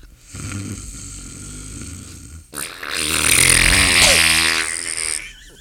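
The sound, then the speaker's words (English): A person imitates loud snoring with their voice, a low rumbling inhale that builds into a harsh, raspy, buzzing snort, with no other talking. “You do the snoring.”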